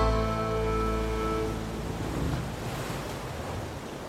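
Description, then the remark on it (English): Atlantic Ocean waves wash steadily against a rocky shoreline by a marine biology laboratory in Woods Hole, Massachusetts, a continuous rushing swell. A humming tone is audible at first, then fades, leaving only the surf. “As she stepped onto the rocky shoreline by the lab and felt the waves of the Atlantic Ocean lapping at her feet for the very first time, Rachel felt like she'd entered a whole new world.”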